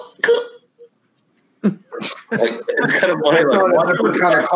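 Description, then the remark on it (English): A person imitates a Baby Yoda cough: a short, raspy burst, a pause, then a few more throaty coughs that run into voices chattering and laughing. “Like where you kind of like see it's like it'll be like Baby Yoda cough.”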